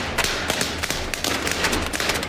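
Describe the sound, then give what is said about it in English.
Bubble wrap pops in a rapid, uneven crackle under feet dancing on it, sharp snaps tumbling over one another like a string of firecrackers, fairly loud, with no talking. “This fool over here being Sammy Davis Jr. on bubble wrap. They think, at most, it sounds like firecrackers.”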